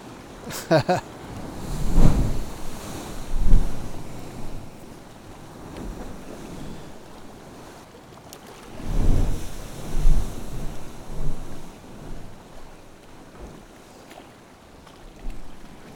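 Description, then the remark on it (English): A broad, rushing roar of surf as a wave breaks and a wall of white water roars out, swelling up and surging in several heavy bursts, with gusty wind buffeting the microphone throughout. “And then a wall of white water roars out.”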